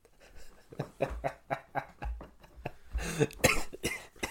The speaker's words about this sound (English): Excuse the coughs.